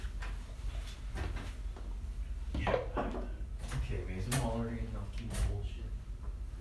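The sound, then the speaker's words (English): A few sharp knocks sound on a door, then it creaks and clatters open, with someone's voice heard faintly around the noises. “He likes to knock on his fucking door.”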